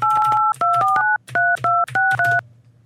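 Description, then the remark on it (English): A quick series of touch-tone keypad beeps dialing the phone number of the company Zenefits, about eight short dual-pitched tones in irregular bursts, clear with no talking. “Only one of these asshole companies that hides their phone number for dear life.”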